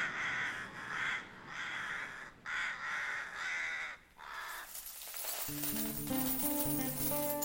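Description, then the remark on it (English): Rooks caw about six times in a quick, steady run, each call harsh and raspy. The cawing gives way to a sustained, bright tonal ringing. “The bumblebees buzzed, and the rooks cawed a slumberous accompaniment.”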